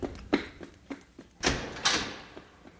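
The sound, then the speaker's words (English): A few quick knocks and thuds give way to two louder, ringing bangs of a door being flung and slammed as someone rushes out, with no voices. “She hissed at him, lips rolled back and teeth bared, then leaped past him out the door and down the corridor.”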